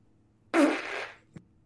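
A single loud, raspy fart bursts out suddenly and trails off over about half a second, followed by a faint short tap, with no talking.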